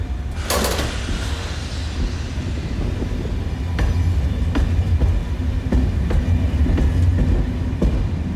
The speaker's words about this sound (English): Well, I managed to get on it, and I found myself on a single carriage train from Brive to Ucelles. It's actually pretty nice. It was shiny, it was comfortable, and it clearly was brand new. Very few people were on it.